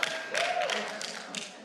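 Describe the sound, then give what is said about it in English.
An audience at a church in Valrico, near Tampa, claps about football in a dense, steady wash of applause that holds for a couple of seconds at moderate loudness, with a faint murmur of voices mixed in. “I don't know what you're clapping about. Like, you're clapping about football.”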